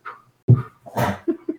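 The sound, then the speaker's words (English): A dog lets out a quick run of sharp barks and yelps, fairly loud, irregular bursts with a whiny edge and short gaps between them, and no talking. “Yes, I think if LSU is in the SEC, the dogs disagree.”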